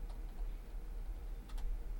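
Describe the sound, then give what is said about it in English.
A few soft, sharp mouse clicks tick sparsely over a steady low hum, with a quick pair of clicks near the end. No one speaks. “I don't think you were typing, were you? I clicked it.”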